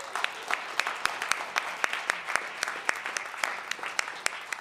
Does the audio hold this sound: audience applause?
yes